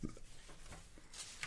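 Pages of a book being flipped, heard as a series of soft papery taps and rustles, ending in a brighter, crisper swish of paper.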